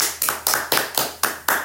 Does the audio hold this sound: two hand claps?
yes